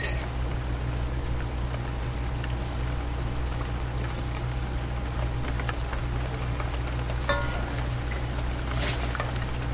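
Steady rain falls on an evening in a continuous, even hiss, with a few sharper drips and splashes now and then over a low constant hum. No one speaks.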